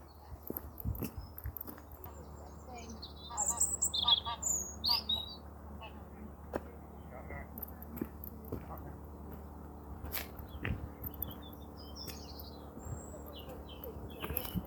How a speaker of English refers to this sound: As I'm sure you can hear, there are lots of birds here.